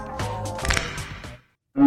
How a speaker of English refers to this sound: A broken neck is actually a cucumber snapped in half.